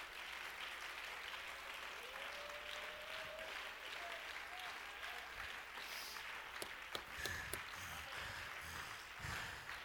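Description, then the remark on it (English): An audience claps steadily in praise of the Lord, a dense wash of many hands applauding together. A few faint tonal voices or cries rise over it, and some sharper, louder claps stand out near the end. “Oh, let's give the Lord a hand clap of praise.”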